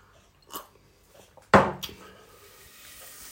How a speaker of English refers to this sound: Now you can hear the pan sizzling a little bit. I can smell from the chili smoke coming off that those chilies are actually going to be quite hot. But I'm going to give them a quick stir around. The caraway seeds also give it a really nice flavour.